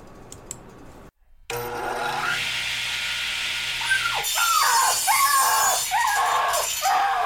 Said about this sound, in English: Oh, Lord, that man just sawed a puppy in half.